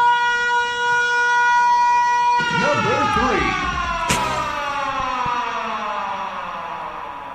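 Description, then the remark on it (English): A long wailing siren holds a loud, steady tone that slowly sinks in pitch across the whole stretch, with some muffled voices briefly underneath midway. “Oh, it's a Twister siren.”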